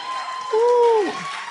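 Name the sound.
audience hand clap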